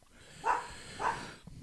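dog barking nearby

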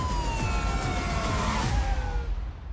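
police car sirens

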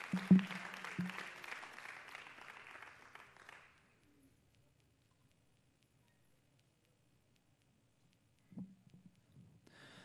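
audience clapping hands

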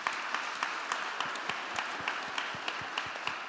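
audience clapping

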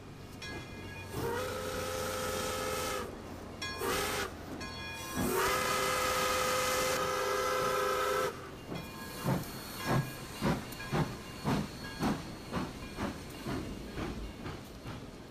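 steam train departing

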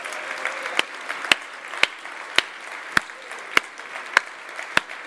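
audience applauding

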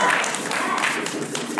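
audience applause

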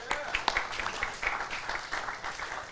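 audience applause

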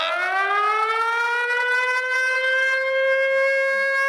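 siren wailing outside

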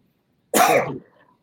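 cough

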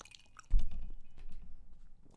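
crunching barbecue potato chips

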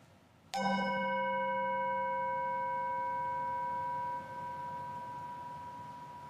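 meditation chime ringing

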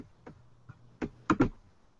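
computer mouse clicking

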